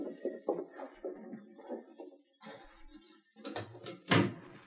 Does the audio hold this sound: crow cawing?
no